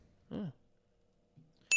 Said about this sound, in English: Give that man a bell.